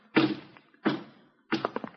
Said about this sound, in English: maybe I better close the kitchen door. Seems to me I feel a draft.